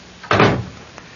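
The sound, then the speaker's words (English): A door swings shut with a solid thud, followed a moment later by a faint click of the latch. Fairly loud, with no voices. “Leave it to me, please, and close the door.”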